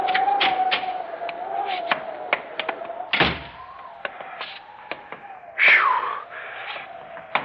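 A door is pushed open, with a long wavering creak of the hinges, scattered knocks and rattles, and a heavier thump partway through, fairly loud, with no one talking.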